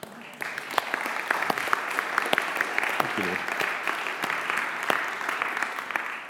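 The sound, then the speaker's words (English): The Gateway church audience claps steadily to applaud God in a dense wash of applause, sharp individual claps popping out of the sustained noise, while a voice speaks briefly over it. “Let's applaud our God.”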